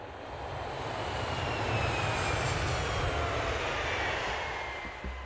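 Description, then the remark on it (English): A steady, droning airplane engine hums continuously throughout, a broad low roar with a faint high whine on top, loud, heard from on board the plane in flight. “I'd barely slept on the plane.”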